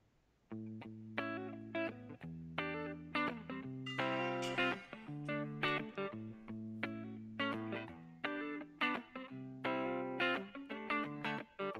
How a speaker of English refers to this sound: I'm just gonna put reverb on this one.